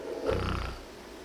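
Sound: person imitating snoring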